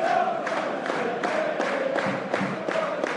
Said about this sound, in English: And applause for Danny Graham. Yeah, well done, Danny. Keep it up.